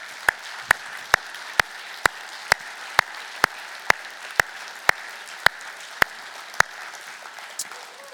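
A crowd applauds steadily for several seconds for teachers, active duty and former military, and other first responders who stood, a dense wash of clapping with sharp, evenly spaced claps standing out about twice a second before thinning near the end. No one speaks.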